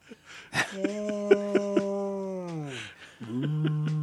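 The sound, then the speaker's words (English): A voice imitates a whale call by mouth as film Foley: a short click, then a long, low, droning moan that sags downward in pitch before fading, followed by a second moan starting up. “That's a lot of the whale noises were done by mouth.”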